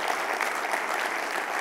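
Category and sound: crowd, audience clapping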